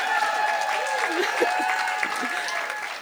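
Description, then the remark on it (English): An audience claps steadily for a few seconds at an evening show, applauding at the speaker's request, a dense, even patter of applause with some murmuring voices mixed in. “Just so you guys know, can you guys give me like a clap or something?”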